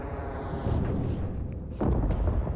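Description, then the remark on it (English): A loud, rumbling explosion fills the space with dense low-end roar, followed by a second heavy blast around two seconds in, with debris-like crackle trailing off. No voices are present. “I mean, it sounded like an explosion.”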